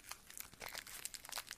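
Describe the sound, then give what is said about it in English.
Crinkly plastic wrapper of a package of sugar-free peppermint Five gum being opened, a quick flurry of bright, irregular crackles and small tearing rustles over about a second and a half, fairly soft, with no talking. “Try not to be too loud opening this, because apparently to someone, my whispering isn't loud enough.”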